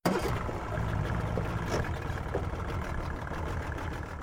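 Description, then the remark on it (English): A boat's motor drones steadily as the boat heads out into a raging sea, a low rumbling engine under a constant rushing wash like wind and churning water, with no one talking. “He then gets in the boat and heads back out into the raging sea.”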